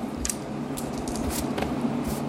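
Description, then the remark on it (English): Dice rattle and clatter in a handful of quick, bright clicks spread across a couple of seconds as they are rolled for an aging roll check, with no talking over them. “Roll the dice.”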